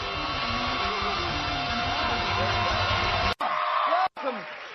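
A loud crowd cheers steadily, with scattered high whoops and yells rising and falling through the roar, cut by two brief dropouts near the end.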